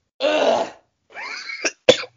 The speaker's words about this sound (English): Dude, I'm telling you, I can't stop coughing and shit.